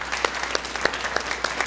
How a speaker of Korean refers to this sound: 예, 우리 한번 박수로 영광 올려드릴까요? 네.